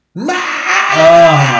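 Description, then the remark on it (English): A voice imitates a teenage actor's cracking puberty scream from 1990s movies, a loud sustained wail that breaks and shifts pitch like a yodel, then surges upward again with renewed force. “It like yodels almost, and then catches a second wind and rises up and goes.”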